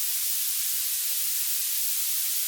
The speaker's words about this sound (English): Whoa! That's violet noise. I don't like that one.